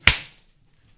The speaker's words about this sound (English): We still got to do the clap and shit. Yeah. Should I do another clap? Do a louder one, pussy.